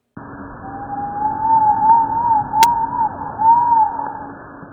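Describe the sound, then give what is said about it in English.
A slowed-down vocalization of a lab rat, originally in the ultrasonic range humans cannot hear: a sustained, mid-pitched whistling tone that wavers and dips a few times over about four seconds, sitting on a steady background hiss with no talking. “That's a rat's voice.”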